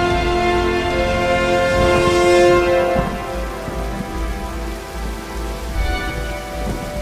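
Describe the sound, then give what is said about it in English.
Steady, dense rain hisses continuously while sustained synth tones hum through it, with a faint low rumble underneath; no voices are heard. “It's dark. There's rain.”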